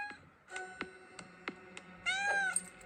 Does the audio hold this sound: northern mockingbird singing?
no